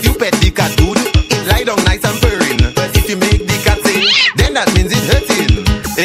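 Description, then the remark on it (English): A cat meows loudly and insistently up close, calling over and over in quick succession with barely a pause, one drawn-out rising yowl standing out midway. “That cat have more than 9 life way.”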